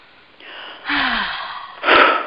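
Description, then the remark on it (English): A long, deep breath drawn in through the mouth as part of a breathing exercise, airy and building in strength, finishing with a louder rush of air. One person, with no talking. “So let's go ahead and take a breath.”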